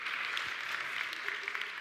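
An audience applauds with a steady, dense wash of clapping that holds at an even level throughout, many hands blending into a continuous crackle with no voices standing out.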